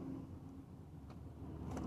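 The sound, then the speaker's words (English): A car rumbles through morning traffic, a steady low road and engine drone with a brief brighter swish near the end. No one speaks. “But you see this car? What am I going to do?”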